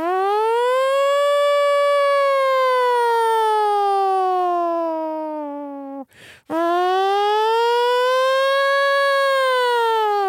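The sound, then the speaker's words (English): A voice loudly imitates a nuclear warning siren, holding a long wailing tone that slowly sinks in pitch, breaking off briefly for a breath before swelling back up into another sustained wail. “Yeah, that was a really good impression of like those.”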